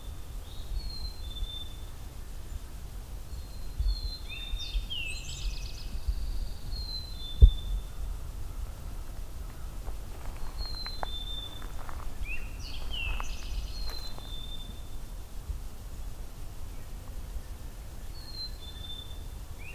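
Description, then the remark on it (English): An eastern towhee sings its 'drink your tea' song, repeating the short phrase a few times over a steady outdoor hiss, with fainter chirps from other birds between phrases. “And the drink your tea of the eastern towhee song.”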